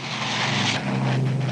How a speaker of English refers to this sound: He was close to Tempelhof, which was one of three small airports in the city that were receiving tons of food and mail and coal and supplies, all delivered by the Allies with their very impressive planes. The RAF York, load 9 tons.